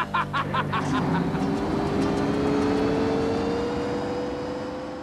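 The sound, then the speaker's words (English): The engine of a 1988 Lotus Esprit sports car revs and pulls away, its steady rising whine and rumble filling the scene, loud at first with a few short bursts of clatter near the start. “we get a look at what Highway has been hauling around in that trailer. A 1988 Lotus Esprit.”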